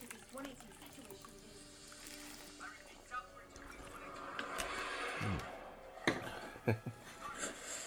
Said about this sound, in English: I'm going to pour myself a more adult beverage.